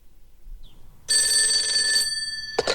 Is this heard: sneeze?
no